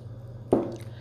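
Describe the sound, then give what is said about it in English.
A single quick slurping sip of coffee, a soft wet gulp that fades within half a second, over a steady low electrical hum with no talking. “Let's take a sip of coffee on that.”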